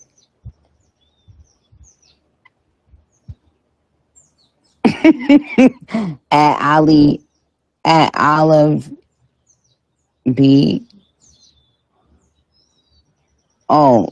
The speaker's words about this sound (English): girl, are you in your backyard? I hear birds chirping. Actually, I am.